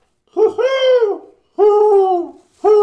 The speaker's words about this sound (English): There's that owl. Duck! That's not a duck. It's an owl.